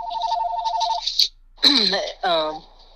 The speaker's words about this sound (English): I apologize if phone's ringing in the background.